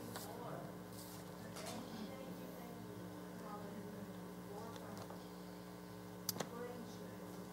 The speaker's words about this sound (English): Move over this way for just a moment. A little bit of a hum there.